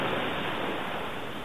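A steady, dense rush of ocean waves, like surf churning continuously at moderate loudness, with no distinct splash or break and no voices.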